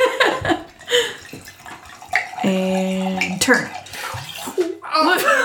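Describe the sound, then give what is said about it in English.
Wine pours from a bottle into a glass in a steady splashing stream with a brief ringing tone midway, wine dripping down the bottle onto the pourer's hand, while people talk over it. “No, it's all dripping down the bottle into my hand now, too.”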